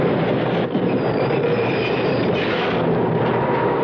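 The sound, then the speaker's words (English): A subway train that has left Manhattan rumbles steadily along the rails, a loud, continuous roar with faint high-pitched squeals and rattling, heard from inside the car with no one speaking. “It's our stop. We gotta get off the subway.”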